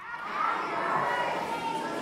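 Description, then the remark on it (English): A church audience with children among them shouts "Happy birthday, Jesus" together on a count of three in one sustained, loud burst lasting about two seconds. “Okay, on the count of three, we're going to just yell it out good.”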